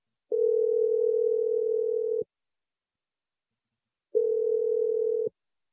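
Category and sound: signal or alarm, telephone dial tone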